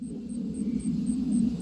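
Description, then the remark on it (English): A low, sustained rumble of thunder rolls on steadily in central Jersey on a summer night while crickets chirp in a quick, even rhythm of high-pitched pulses above it. No one speaks. “Here are the rumbles of thunder in central Jersey as crickets sing on a summer night.”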